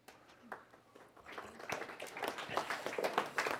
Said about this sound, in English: The golf applause.